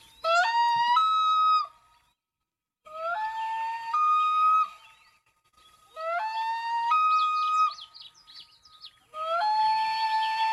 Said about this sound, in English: That's a very upset loon that has a baby chick by it, and an eagle is flying over. Well, there's several types of loon calls, but this particular one, when we hear this and it's insistent like that, we look for an eagle in the sky